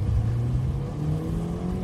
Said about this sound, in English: and I am in my car, driving, hands-free, don't worry, don't get all in a pinch about how I'm driving.